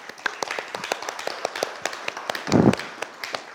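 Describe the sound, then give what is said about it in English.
A round of applause from a small group of Compassion supporters giving themselves a round of applause: many sharp, irregular claps overlap in a steady patter, with a short low murmur of voices rising briefly near the end. “Do you want to give yourselves a round of applause?”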